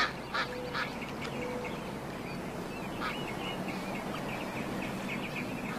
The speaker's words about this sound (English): What are you looking at, Ray? Ray, the ducks are over here.